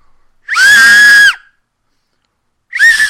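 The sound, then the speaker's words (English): A shrill, piercing whistle made by blowing over an acorn held under both thumbs, lips on the thumbs, sounds in two loud blasts, a long wavering shriek followed by a shorter one, almost like a scream, with no talking. “You put the acorn under both thumbs, and you put your lips on your thumbs and blow.”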